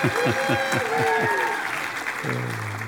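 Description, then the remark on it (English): A church audience breaks into steady applause for the speaker's assistant, a dense wash of clapping that holds at a fairly even loudness, with a sustained tone from an organ or keyboard rising underneath near the end. “Let's give an applause for my lovely assistant here.”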